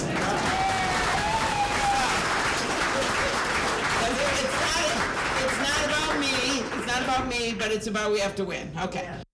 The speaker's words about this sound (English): Well, we have one of those moments today. Here it is. So people say we have one goal, and that is having someone that can win, right? This is where you're supposed to clap.